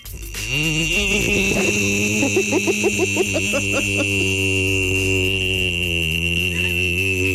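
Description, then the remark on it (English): A truck with a performance exhaust is started: the engine cranks with a quick pulsing stutter, then catches and settles into a loud, steady, deep exhaust rumble, with a high thin whine from the belts warming up held above it throughout. “sure, you hit it and you can hear the engine turning over. And then you can hear the exhaust.”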